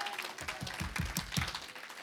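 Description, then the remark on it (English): A crowd claps enthusiastically to praise God, many hands blending into a dense, steady wash of applause, with a rhythmic low thumping pulsing underneath. “Oh, somebody ought to clap their hand and praise Him that He's there.”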